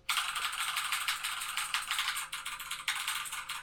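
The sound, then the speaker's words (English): Rapid, continuous clacking of a tenkeyless mechanical keyboard with Cherry MX Blue knockoff switches, sharp bright keystrokes tumbling together in a loud, fast typing burst with no voices. “I have my 10 keyless Cherry MX Blue ripoff mechanical keyboard.”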